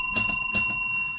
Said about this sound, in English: So I'm going to switch to spoilers and I'm going to ring a physical bell.